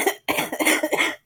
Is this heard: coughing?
yes